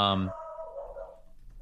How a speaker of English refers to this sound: All right, well, you can hear my dog, and that's guarding the apartment from nobody who's probably breaking in.